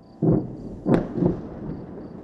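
Three deep, rumbling booms from artillery guns firing and detonations over Gaza, heard in Israel near the border with Gaza on a Friday evening, follow one another within about a second, the middle one sharper and louder, over a low background hum.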